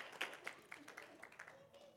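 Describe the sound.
Scattered hand clapping from an audience for children as they make their way out, a quick run of sharp, irregular claps at modest volume, with faint voices murmuring underneath.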